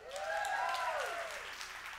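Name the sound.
audience clapping and shouting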